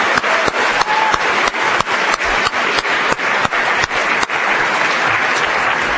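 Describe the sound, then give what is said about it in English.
A crowd at a large event claps steadily for several seconds, a round of applause thanking the event's organizers, a dense patter of many hands with a few sharper individual claps standing out, loud, with no one speaking. “if we could give them a round of applause, it really took an enormous hard work.”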